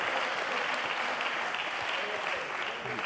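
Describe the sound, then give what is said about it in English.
An audience, just seated, claps together in a sustained burst of dense, steady applause at an even loudness for a few seconds. “When you get seated, just clap your hands one more time.”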